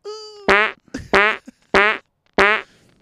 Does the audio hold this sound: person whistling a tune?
no